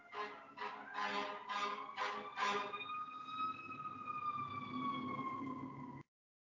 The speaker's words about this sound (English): Siren.